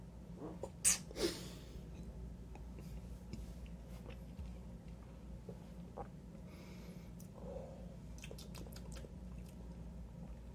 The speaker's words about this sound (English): Let me take another sip. So, yeah, even smell, you're getting that pininess to it. Maybe the tiniest bit of sweetness. Take another sip.